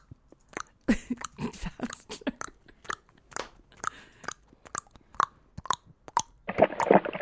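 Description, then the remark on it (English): A person mimics a dog lapping water from a bowl with a string of wet, clicking mouth sounds in an uneven rhythm, ending in a louder, denser flurry of slurping noise. “It's super hilarious because then it's like lap, lap, lap, lap.”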